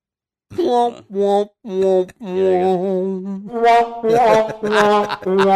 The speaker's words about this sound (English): There it is. That is the sound of Rob, of post-coital Rob, the sound of the sad trombone.